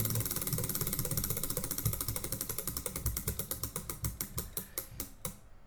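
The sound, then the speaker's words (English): A spinning prize wheel, the 'wheel of destiny', given a rolling spin, clicks rapidly at first, the ticks gradually spacing out and slowing as it winds down to a stop, with a faint mechanical rumble underneath and no voices. “All right, so we're giving it a rolling spin, as we did last week.”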